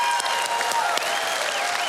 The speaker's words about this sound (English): Come on, let's clap our hands and shout to God with a joyful praise. Come on, Clearwater, let's clap our hands and shout to God with a joyful praise. Yes. Oh, y'all sound good.